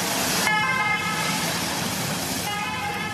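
A loud two-tone ambulance klaxon siren blares continuously over road traffic noise, its harsh horn-like tones cycling back and forth, sustained throughout, as the ambulance carries a rider away down a mountain during the Tour de France.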